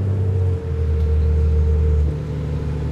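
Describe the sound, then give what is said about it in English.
A steady, heavy engine rumble with strong low hum and droning harmonics, heard from inside a bus carrying rain-soaked passengers; the pitch shifts slightly midway as the motor changes speed. No one speaks. “And now I'm on a random bus with a bunch of wet people, and it was just like the bus of the damned.”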